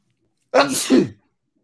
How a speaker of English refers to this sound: Bless you.